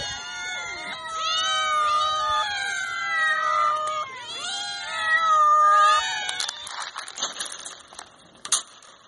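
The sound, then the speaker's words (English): A cat meows repeatedly in drawn-out, wavering cries, several overlapping yowls, then the calls stop and a few crackly rustling noises follow. No one speaks. “Okay, I definitely have some opinions on this one for not being anywhere near the number 1 slot, but hey, at least it's in the top 10, with 61 points and 7 people who voted for it, the cat.”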